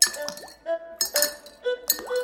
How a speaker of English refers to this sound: Then their hands went into their pockets as they fished out their 5 silver coins. Feeling ashamed and perplexed, they lined up single file. And then, one by one, they walked up to the jar and dropped in their coins.